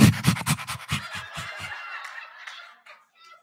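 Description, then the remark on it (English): A person imitates a dog panting: a quick run of about eight rhythmic, breathy huffs, fairly loud, trailing off into a softer airy exhale. “you're not getting a dog. We're not getting a dog.”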